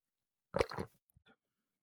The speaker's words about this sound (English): And as I take a sip of my coffee,